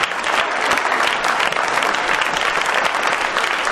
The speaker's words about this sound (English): Clap!